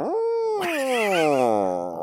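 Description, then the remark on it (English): A person imitates a frightened cat with one loud, drawn-out yowl. The pitch jumps up, breaks into a raspy, hissing burst, then slides slowly downward for about two seconds. “Like when you scare a cat and they go, and they get all big and their hair stands up.”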